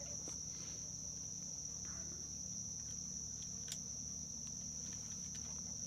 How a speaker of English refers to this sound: Oh man, the sounds of the morning. The marsh is waking up. Yep.